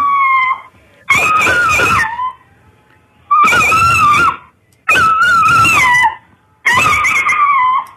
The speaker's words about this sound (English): What is making that Italian Greyhound scream? This dog just is screaming at something out the window. Oh. Not in pain. That's its bark? It's excited, but yeah.